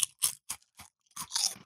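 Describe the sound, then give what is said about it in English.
Someone chews crunchy, slightly stale cheesy snacks, with five or six sharp, dry crunches in an uneven rhythm and brief pauses between bites. No one speaks. “They're a little bit of a stale crunch to them.”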